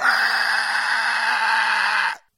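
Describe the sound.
A person's voice imitating a frog with one loud, strained, raspy cry held steadily for about two seconds before cutting off abruptly; it sounds more like a screech than a croak.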